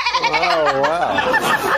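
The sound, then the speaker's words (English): A sheep bleats once in a long, wavering, quavering cry that dips in pitch midway, fairly loud, with no talking over it. “Easily influenced, like the sheep.”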